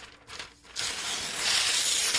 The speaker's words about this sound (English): Yes, and that sound right there is me tearing paper, okay?